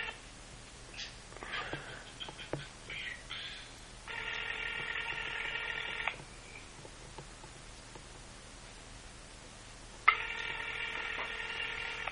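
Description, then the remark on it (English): A phone line rings back on an outgoing call: two steady, buzzy ring tones of about two seconds each, separated by a long silent gap, preceded by faint clicks and handling noises. “I don't know if he'll answer his phone, but let's see what happens.”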